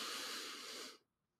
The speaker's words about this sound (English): And if they aren't, let's do a quick breathing exercise in through the nose.